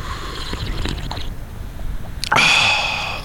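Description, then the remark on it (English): People on a San Francisco radio show take a couple of soft, wet slurping sips of coffee from cups, followed by a sudden brighter, louder burst of sound that holds and slowly fades. No one speaks. “San Franciscans, grab your cups of coffee, and let's have one last sip, at least on the radio, to end the year.”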